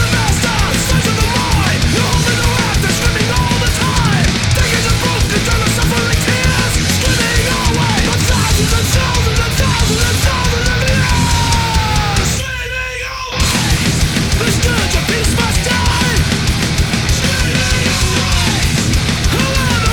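Loud, dense thrash metal by a San Francisco thrash band, with distorted guitars, pounding drums and harsh screamed vocals, driving steadily with a brief near-silent break around the middle before slamming back in.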